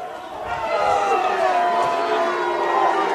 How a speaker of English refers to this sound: Charger side is not happy. Lots of boos from the crowd here on the home side. Looks like we are not going to like this call.